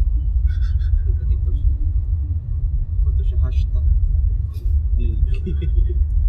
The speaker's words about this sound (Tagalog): Baka may jeep.